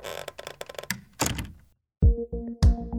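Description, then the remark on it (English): A door swings and shuts with a few heavy thunks, preceded by brief rattling and clattering handling noises, then a short silence before the solid low impacts. “Gertrude Bird closes the door.”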